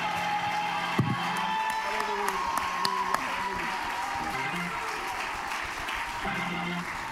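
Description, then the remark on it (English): A church audience claps and cheers together, a dense, steady wash of applause mixed with shouting voices, sustained and fairly loud throughout with a few sharper bursts. “Now clap your hands unto God and shout one more time with a voice of triumph as you are being seated.”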